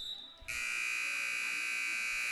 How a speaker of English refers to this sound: 1 second, buzzer will sound.